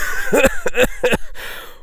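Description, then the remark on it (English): A voice gives three quick, breathy bursts, part cough and part laugh, with a fainter catch trailing after. It is moderately loud, with no other sounds around it. “A laugh mixed with another cough.”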